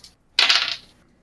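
Two eight-sided dice are rolled for Thunderwave damage in a tabletop role-playing game, landing with a sudden bright clatter that rattles for about half a second before fading into silence. No voices are heard.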